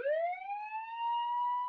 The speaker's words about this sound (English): Okay, all right. I've heard enough. I think it's time for a second scam siren in this story.